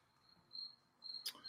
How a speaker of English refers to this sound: Yeah, my cat came in here to try and kill this cricket in the background, but he gave up very quickly.